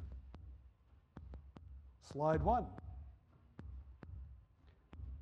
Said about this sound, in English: They've got the headphones on. The headphones are amplifying their heartbeat. And the slides are moving one after another for a few seconds each slide. And they're listening to their heartbeat.